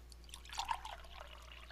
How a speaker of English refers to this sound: But then there's, for no reason at all, this sound effect. Join me, y'all. Fill up those glasses.